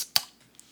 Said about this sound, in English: Ooh. Cracking open a cold one. Ooh, a little Heineken.